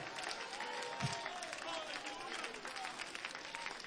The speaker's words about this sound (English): Hallelujah. Clap your hands and give God great praise here today. Hallelujah.